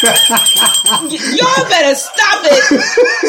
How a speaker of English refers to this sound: We got to ring the bell again on that one.